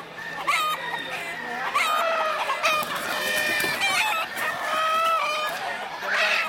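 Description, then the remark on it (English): Old English game chickens, a show breed, cluck and crow, a busy flock with overlapping calls and a drawn-out rooster crow rising through the steady clucking, with no talking. “These are standard Old English game, which is related to most of the pit games, what they use for cockfighting.”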